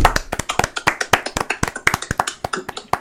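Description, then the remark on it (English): Hand claps mixed with hits on a tabletop: a quick, fairly steady run of about twenty sharp, crisp smacks over three seconds, loud and dry, with no voices. “I mean, you did clap and then you hit your table.”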